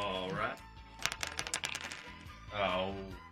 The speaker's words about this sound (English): we're going to let you roll the dice. Your normal handicap is 18, but whatever the number comes up after rolling the dice will take off from 18. That will be your handicap for this afternoon and this afternoon only, so roll those bones.